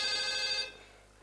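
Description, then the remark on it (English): A telephone rings for an incoming call with a bright, steady electronic trill for about half a second, then cuts off, leaving a faint hum behind. No voices are heard. “So we are still having so many phone calls coming up. Let's pick another phone call.”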